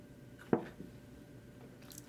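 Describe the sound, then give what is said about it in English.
Quiet sips of water: a short wet slurp followed by a softer swallow, then another sharp sip near the end, with no talking. “Had to get a sip of water.”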